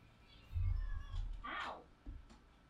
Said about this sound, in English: Tara Jr., what are you meowing at? All right, come here. That's it. You cranky bastard.